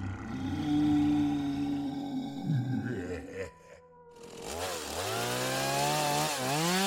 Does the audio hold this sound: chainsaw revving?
yes